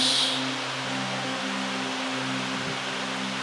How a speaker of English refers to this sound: it's starting to rain again heavily here